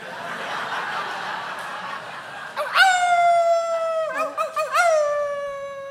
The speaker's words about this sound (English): That the wolves again, Pa? I reckon. Ones that took your leg? I reckon. Pa? Yep. They coming back for your other leg?